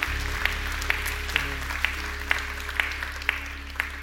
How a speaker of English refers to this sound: Come on and clap your hands and say amen. This morning. Amen.